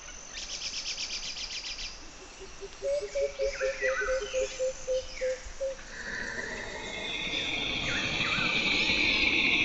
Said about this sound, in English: Careful! The screech of the siren vines is an auditory hypnotoxin.